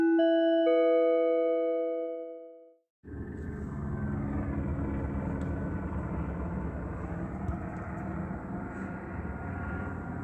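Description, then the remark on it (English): A chime rings and fades over the first few seconds, then a loud, steady helicopter roar with deep rumbling takes over as the helicopter flies directly over a vehicle in California at 1:09 in the morning, continuing without a break to the end. “This is the state of California that is flying directly over this vehicle that I'm sleeping in, flying over by helicopter, and repeatedly doing so”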